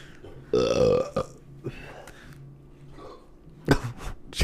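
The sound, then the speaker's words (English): A man lets out a loud, drawn-out burp, followed by a few shorter grunting noises and faint background clatter. “It's just male burps.”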